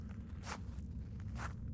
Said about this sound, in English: I can hear the footsteps of the stranger still following.